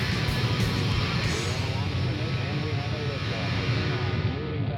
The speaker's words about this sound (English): Moving back. Saturn V lifting off the power.